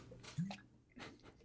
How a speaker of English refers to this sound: I'm not even looking at you and I can tell you're drinking water. I can hear the glug, glug, glug, glug, glug.